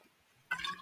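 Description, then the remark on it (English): A brief gulp of water after a moment of near silence, a single wet swallowing sound lasting under half a second. “Just had some water.”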